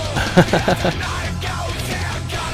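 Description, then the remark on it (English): A rock singer's harsh, strained scream rises over dense, distorted music, with a few rough vocal bursts early on before the roar carries on steadily for a couple of seconds. “been screaming like this for like 25 bloody years.”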